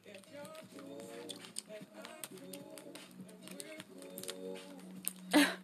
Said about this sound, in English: So, as I was shuffling that, and the Nine of Swords is at the bottom of the deck, and I was like, yeah, I'm not going to... It came out.